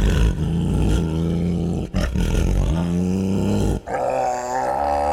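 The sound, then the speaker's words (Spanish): Three long, growling tiger-like roars blast one after another, loud, each broken by a brief pause, with a dense, brassy musical backdrop and no talking. “Y antes de que el tigre se nos enoje más”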